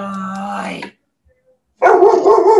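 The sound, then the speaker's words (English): A dog barks twice, loud and close, each bark drawn out and harsh, with a short silent gap between them and no talking over it. “We didn't cut for any reason, and Addie's dog did not just bark.”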